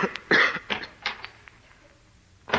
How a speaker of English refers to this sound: I'm going to get you something for that cough. No, I'm all right. It's just a little sore throat, that's all.